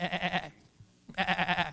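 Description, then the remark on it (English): A sheep bleats twice, each call a wavering, quavering baa lasting under half a second, separated by a brief pause, clear with no talking. “shepherds were just doing their job that night in Bethlehem. They were tending sheep.”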